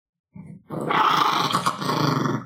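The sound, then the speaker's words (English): A dog, Prime Minister Chino, growls, a low rumble that starts softly and then swells into a sustained, snarling growl lasting a couple of seconds, with no talking over it. “If anything goes sideways, it's the dog's fault.”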